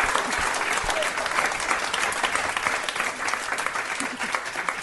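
Steady audience applause fills the whole stretch, a dense wash of many hands clapping at an even, sustained level with no one speaking over it.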